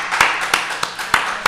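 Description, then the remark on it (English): Five sharp hand claps in a steady, unhurried rhythm as a round of applause for a guest, each a crisp bright smack, with a soft hiss of background noise between them and no voices. “How about a round of applause, everybody”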